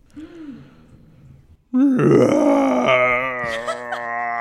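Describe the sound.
A human voice imitates a giant creature's roar: a quieter low groan, a brief pause, then a sudden loud, raspy, sustained bellow that holds for nearly three seconds.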